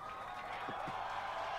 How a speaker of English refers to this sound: Where is this clapping coming from? I think it's mission control. Yeah, everyone's just watching. They're going bananas. This rocket launch. They're clapping before it's taken off.